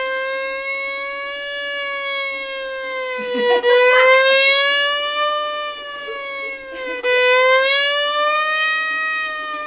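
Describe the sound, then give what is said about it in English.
A police car siren wails loud, its pitch sliding slowly down and back up in long sweeps, with a couple of brief rough bursts of noise over it, as the police car drives right behind a driver on a highway and then speeds past. “He looks in his rearview mirror, and sure enough, he sees a police car right behind him.”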